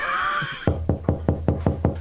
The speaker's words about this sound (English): Oh, do you hear a knock at the door? I don't.